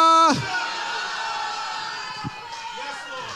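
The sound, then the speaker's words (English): A large audience erupts in loud, sustained shouting of hallelujah and cheering right after a single strong voice calls for it, the mass of voices blending into a continuous roar for several seconds. “Somebody shout hallelujah.”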